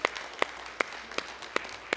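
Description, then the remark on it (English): A church audience clapping in unison as a hand clap of praise, six sharp, evenly spaced claps in a steady rhythm over a faint hum of background noise, with no voices. “Come on and give Him a hand clap of praise one more time.”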